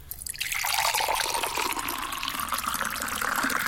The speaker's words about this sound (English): OK, basically, you're going to hear Matt pour some water into a jar. Just shout, stop.